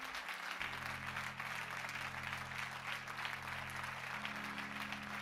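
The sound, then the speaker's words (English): An audience claps hands as praise to the Lord in a steady, dense wash of applause lasting several seconds, with a low sustained organ or keyboard tone humming underneath. “Would you clap your hands and give the Lord a hand of praise?”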